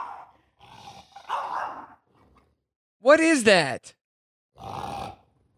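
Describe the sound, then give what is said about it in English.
A French bulldog gives strange, gurgling growls in a few short bursts, one rising into a loud strained vocal sound, while a person briefly speaks. The dog growls as someone tries to take away its chew toy. “So, the French bulldog let out the weirdest growl when someone tried to take away their chew toy.”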